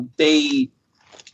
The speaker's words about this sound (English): You know, just got to get a chew on the steak here for a little bit.